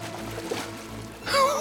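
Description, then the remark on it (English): Water splashes and trickles, a steady wash that swells into a brighter gurgling pour near the end, as clean, crisp water from a gushing spring in Ephyra's town center is scooped up in cupped hands to drink. “Sisyphus conjured a gushing spring of clean, crisp water. Sisyphus giggled with excitement and scooped it up in his hands to”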